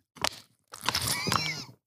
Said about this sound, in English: Oh, you really got the sound on it and everything. I'm sitting here trying to sip quietly.